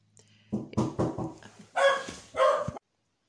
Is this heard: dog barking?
yes